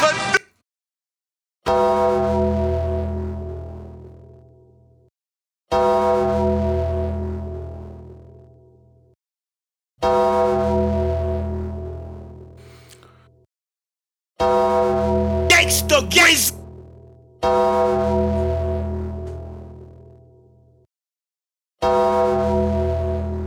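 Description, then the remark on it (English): The Undertaker's wrestling entrance bell: a deep, heavy bell tolls slowly and steadily, six or seven strikes a few seconds apart, each ringing out and fading before the next, with a brief noisy crackle partway through. “Probably a record for the most Undertaker bells in one show. And for good measure, another.”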